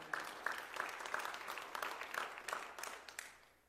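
An audience claps hands in praise to God, a dense burst of many overlapping claps lasting a few seconds before tapering off, with no voices over it.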